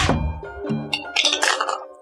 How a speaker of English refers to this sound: Make me one last perception check before you guys leave the tree area. I'm going to roll this dice around. I've been rolling poorly.